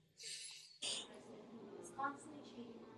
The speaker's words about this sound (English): Let's take a deep breath, and whoever's listening, plus you two sitting, you better be breathing. If I don't hear you breathing on the phone, we're going to have a problem. Let's breathe and forgive ourselves. Ready? Okay. One, two, breathe in.